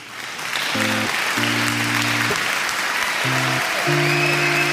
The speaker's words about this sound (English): And the crowd goes wild.